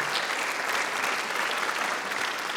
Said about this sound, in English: Yeah, you can clap.